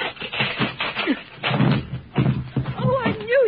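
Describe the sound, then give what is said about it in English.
The Tin Man's axe chops at a locked wooden door in the witch's castle to free Dorothy, delivering several heavy thuds a second or so apart while excited voices talk and shout over the blows. “Tin Man, your axe. Chop down the door.”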